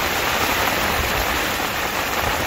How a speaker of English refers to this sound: Let's just pan round that way, and yeah, look, you can see now I've got sunshine and the rain. There should be a rainbow somewhere, but I haven't seen one of them yet.